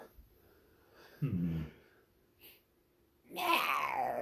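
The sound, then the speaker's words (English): A voice imitates the call of a cat-like creature with imp ears, a stinger tail and little wings: a short, low, throaty meow-like call, a brief pause, then a louder breathy hiss to close. The sounds are clear, with no other talking. “That's the sound it makes. What's up with him? Oh, my cat?”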